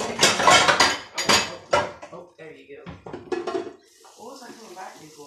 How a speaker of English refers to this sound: Did you already drain it? No. I'm boiling out most of the water. I'm looking for the strainer.